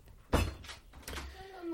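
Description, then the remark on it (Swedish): A door swings shut with a solid thud, followed about a second later by a softer knock or latch rattle; a faint voice murmurs near the end. “Du kan stänga dörren där, så kommer jag ut strax.”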